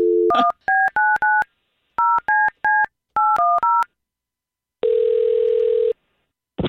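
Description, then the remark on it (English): Telephone keypad tones dial a number to call back a disconnected caller: ten crisp beeps in quick groups of three, three and four, followed by one long buzzing ring tone. No one speaks. “I mean, we can only legally call him back one more time. No, call him back.”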